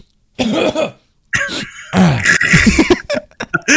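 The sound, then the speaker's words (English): A man vocally imitates his own cough: a short rasping burst, a pause, then a longer, drawn-out hacking, throat-clearing sequence with several choppy bursts, loud. “There's one point too where I coughed. I swear to God, this is exactly what I go.”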